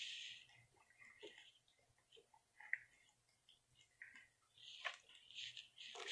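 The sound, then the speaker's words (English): Someone drinks a glass of water: soft sips, swallows and faint liquid sloshing with small mouth clicks, spread over several seconds with no talking. “Sorry, I need a drink of water.”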